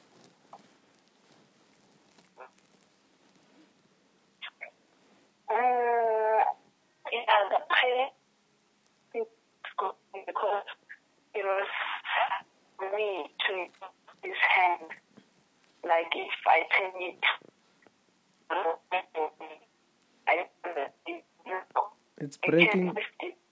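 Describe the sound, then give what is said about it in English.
A voice over a phone line comes through in choppy, broken bursts, cutting in and out with abrupt gaps of silence between fragments of speech, as the network drops when the caller stands up. “I'm saying the phone is breaking a bit again.”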